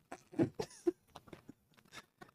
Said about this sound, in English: One more chip for the audience. One more chip. Oh my god. So good. So good. Put it in your mouth. And chew on it. So good.